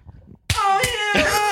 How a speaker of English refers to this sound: I'm just gonna slap my own back here for a second.